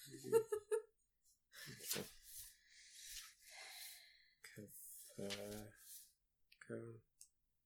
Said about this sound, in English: As funny as you can actually hear you turning the pages.